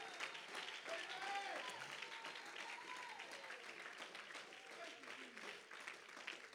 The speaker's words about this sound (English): You ought to clap your hands. You ought to make some noise right now because we found a new and improved covenant.